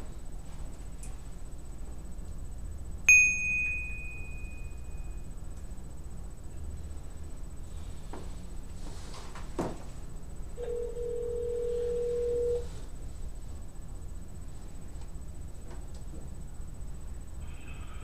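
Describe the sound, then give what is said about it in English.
A phone call being placed from a studio: a short high electronic beep, a quiet pause, then a single steady ringing tone lasting about two seconds over faint background hiss, with no one speaking. “Let me call”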